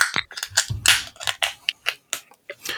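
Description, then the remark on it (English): A 12-ounce can of Cran Orange Kellerbier is cracked open: a quick run of sharp, crackling metallic pops and crinkles, about a dozen bursts in a few seconds, with no voices. “We're going to crack this. We're going to grip it and rip it, baby.”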